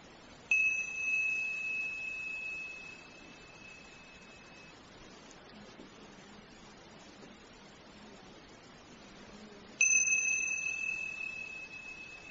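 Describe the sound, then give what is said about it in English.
A meditation bell is struck twice, about nine seconds apart, each ring sustaining a clear, shimmering tone that slowly fades over a soft, steady hiss of background noise. “Again, when you hear the sound of the bell in your own time, quietly, gently, open your eyes and begin.”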